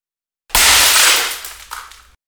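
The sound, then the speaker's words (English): A dinner plate smashes against a wall just above and to the right of a television with a loud, sharp crack, followed by a brief bright scatter of shards that fades quickly; no one speaks. “My dad's dinner plate disintegrated with an atomic crack as it smashed into the wall just above and to the right of the television and inches from my head.”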